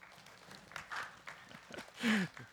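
Sparse, scattered clapping from a small audience, a few hands patting unevenly at moderate distance, swelling briefly near the end where a faint voice also sounds.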